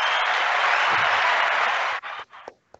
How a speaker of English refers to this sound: Give him an applause.